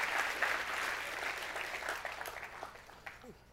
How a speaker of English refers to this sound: Would you guys give Preston a round of applause?